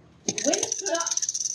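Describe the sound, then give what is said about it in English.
A flipped coin lands with a sharp clink and keeps ringing, wobbling in quick metallic pulses as it settles, while a voice briefly sounds underneath. “The topic is heads or tails?”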